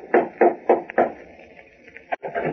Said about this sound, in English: One evening, he decided to call on Bob, went to his house, and rapped on the door.